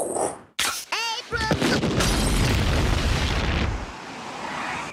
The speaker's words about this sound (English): That sounded like an explosion at the old Simpson place. Forget it. That's two blocks away. Looks like there's beer coming out of the chimney.